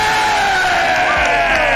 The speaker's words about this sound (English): Shout out to … for that beat drop that we just screamed over top of because our excitement could not be contained